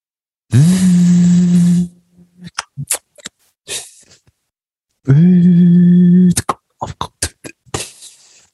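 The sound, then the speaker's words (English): A voice imitates an office printer: a loud, steady buzzing hum, then a run of sharp clicks and clacks, with the whole hum-and-click sequence performed twice. “It's our impressions of an office printer.”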